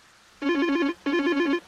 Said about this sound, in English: I do believe the phone is ringing, Ted.